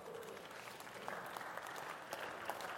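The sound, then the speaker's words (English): An audience claps steadily in a dense, continuous patter of many hands, a few sharper claps poking out now and then, with no voices heard over it. “The claps got a little less loud.”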